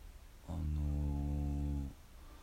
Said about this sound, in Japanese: お う、やあくびしちゃってる